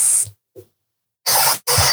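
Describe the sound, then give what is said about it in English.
A snake-like hiss comes in sharp, breathy bursts: a short one, a faint brief puff, then two longer loud hisses back to back, with no talking. “好 ，Snake， 好。”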